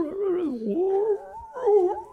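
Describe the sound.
A person imitates a wolf, trying to talk to a direwolf in wolf, with drawn-out, wavering vocal howls and whines, the pitch sliding up and down across a couple of sustained calls with a brief pause between them.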